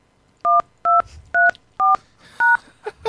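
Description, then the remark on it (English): Five crisp touch-tone phone keypad beeps pressed at a steady pace as a voicemail password is entered, each a short dual-tone chirp, followed by a brief faint rustle at the end. “Now everyone knows my password.”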